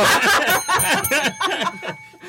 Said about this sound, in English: Ring the bell.